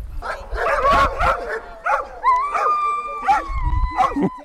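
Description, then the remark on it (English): A chorus of excited sled dogs yelping, barking and howling at once as harnesses are put on them, with sharp repeated yips over drawn-out whines and howls, loud, no talking. “When they're not yelping, they're nuzzling with their handlers.”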